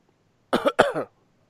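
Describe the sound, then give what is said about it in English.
A fairly loud double cough, two quick harsh bursts back to back, followed by silence. “Now I've got to get you that cough button.”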